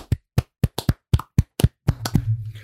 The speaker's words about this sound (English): But we got ourselves a winner. So as we do at the end of a bracket, we got to clap this baby out.